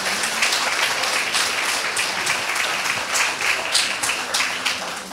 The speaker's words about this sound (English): Without a doubt, they've been absolutely exceptional for their clubs, and, you know, fair play to them and congratulations to everyone. 2023, yeah, you can give them a huge big round of applause.